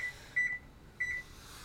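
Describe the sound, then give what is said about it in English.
Two short electronic beeps from a timer being set for cooking eggs, each a bright high tone lasting about a quarter second and spaced roughly half a second apart, over a faint steady hum with no talking. “Sorry, I'm setting a timer so I don't forget my eggs.”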